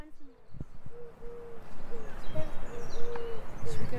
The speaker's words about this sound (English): Yeah, there is literally about 50 feral pigeons in front of us.